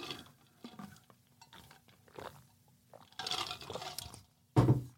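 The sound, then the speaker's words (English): Several quiet slurping sips of tea, each a short wet burst, followed by a longer noisy slurp and one louder gulp at the end, with no talking. “It's a sip my tea.”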